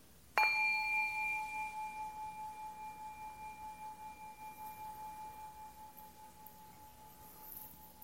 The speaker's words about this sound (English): So with those words, we are going to begin. I'm going to offer a sound of a bell to begin.